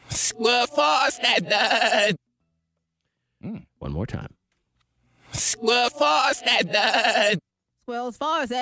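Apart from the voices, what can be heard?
sheep bleating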